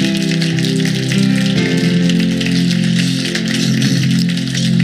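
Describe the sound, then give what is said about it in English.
An audience claps in praise to the Lord, a dense, steady wash of many hands that stays loud for the full five seconds, with sustained low musical tones humming beneath it. “Before you're seated, put your hands together one more time and give the Lord a hand clap of praise.”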